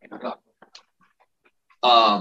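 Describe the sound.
Dogs in the background give a short burst of barking or whining, then after a few faint sounds let out a loud, sustained whine or howl, with brief voice-like sounds mixed in.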